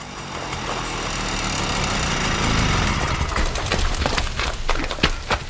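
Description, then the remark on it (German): A motorcycle engine drones steadily and grows louder over a few seconds as Otto Röhrling rides up to an entrance, then shifts into a rougher, sputtering idle with irregular clicks and rattles. No one speaks. “Als Otto Röhrling mit seinem Feuerstuhl dort auftauchte, flitzte Tim los.”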